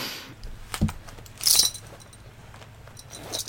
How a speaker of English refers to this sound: You like that good belt sound? It's a million degrees. I'm taking my pants off.